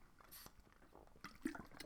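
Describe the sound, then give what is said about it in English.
Someone takes a drink of Body Armor from a bottle: soft liquid sloshing and a few quiet gulping, swallowing sounds over about two seconds, with no talking. “Hold on, let me take a drink of it.”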